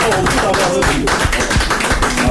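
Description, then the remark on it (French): A crowd claps steadily for a couple of seconds to applaud the first winner, a dense patter of overlapping hand claps with voices talking and calling out underneath. “On applaudit le premier gagnant.”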